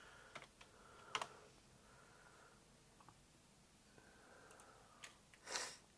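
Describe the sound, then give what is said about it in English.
Quiet, irregular clicks and taps of someone typing on a computer keyboard, coming in short uneven bursts with pauses between keystrokes, ending in a slightly louder clattering press. “God, I need to learn how to use this keyboard properly.”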